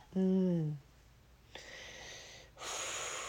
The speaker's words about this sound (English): I find myself releasing when I do my podcast through yawning, and I love that.